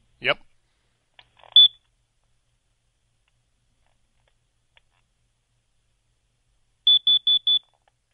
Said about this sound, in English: Now, I'll play the difference for you with a carbon monoxide alarm, okay?